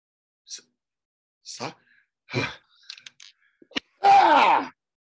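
Two people sneeze at once in one loud, harsh burst near the end, preceded by a few short breathy intakes and faint clicks.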